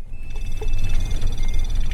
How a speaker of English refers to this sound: It's the moment when the alarms on the Geiger counters all start going off at once that it sinks in. The bus I'm on is taking me inside a 12-mile ring around the Fukushima nuclear power plant that just about everyone else has been evacuated from.